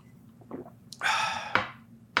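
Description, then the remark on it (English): A quiet swallow: a few soft wet mouth clicks, then a breathy throat gulp lasting about half a second, followed by two sharp little clicks. No one speaks. “Oh, sorry, I swallowed.”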